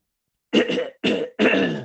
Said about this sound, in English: That was me clearing my throat and also doing the Terminator theme